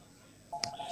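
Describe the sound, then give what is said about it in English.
A telephone's electronic ring in a pub cuts in halfway through, a steady high tone that holds to the end, marked by a sharp click as it begins, against quiet, faint murmuring. “Yeah, I don't know if you get many phones in pubs these days, but anyway, someone's waiting for it's a taxi probably.”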